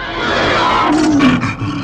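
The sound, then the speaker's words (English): Loud, snarling growls and harsh, high shrieks of displeasure from creepy crawly court creatures reacting to Dr. Smith's outburst in a dim, fog-covered courtroom, layered in a dense, agitated chorus that swells and rasps for about two seconds with no speech. “The creepy crawly court creatures respond to his outburst with shrieks and growls of displeasure.”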